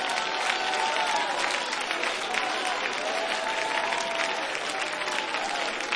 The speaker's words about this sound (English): Come on, saints of the Most High God, really clap. Really open your mouth. Really praise from the platform all the way to the back.